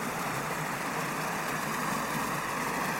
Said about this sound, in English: And this is the sound of the bywash at the bottom of the lock. All the water flowing into the canal again. Glistening white in the darkness.